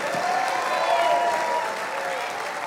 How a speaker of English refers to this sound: Take those anointed hands and put them together. Give Jesus the biggest hand clap and shout that you've ever given anybody.